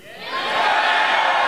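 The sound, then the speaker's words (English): A large crowd roars and shouts in a loud, sustained swell that builds over the first half-second and then holds steady, a dense wall of many voices with no single speaker standing out. “Hey, this is really good crowd here.”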